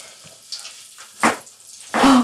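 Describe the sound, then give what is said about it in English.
Food made with mayonnaise bubbling and sizzling as it fries, in a few hissing bursts that swell louder toward the end, with no one talking. “It's like bubbling.”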